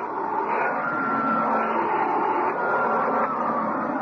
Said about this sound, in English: Come on in. Just give me a minute to vacuum the cat lint off this carpet.